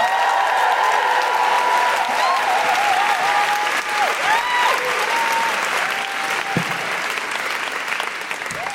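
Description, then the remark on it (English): A crowd applauds loudly and steadily for the full stretch, welcoming the last act of the night, dense clapping with cheers and whoops rising above it, no speech over the top. “please join me in giving a huge, huge, huge welcome and round of applause for our last act of the night, who's going to blow the roof off this place.”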